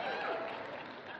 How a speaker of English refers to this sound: You can applaud for her. She hates it. I love it. So go ahead.